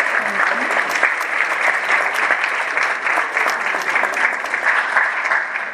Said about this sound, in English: I would like to bring him up to, as one of our panelists. Thank you. Round of applause.